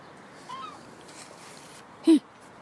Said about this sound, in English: Oh, there's loads of seagulls up there.